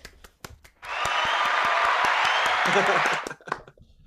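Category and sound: sound effect, applause sound effect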